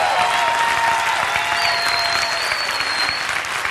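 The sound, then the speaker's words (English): A church audience claps steadily in praise in a dense, continuous roar, with scattered shouts and a couple of high whistles rising above the applause throughout. “Give the Lord a big clap and a shout this morning.”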